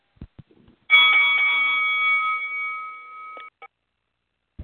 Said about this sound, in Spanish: Ok, ya tú sabes, el sonido de la campana.